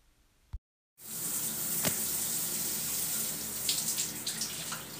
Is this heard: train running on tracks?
no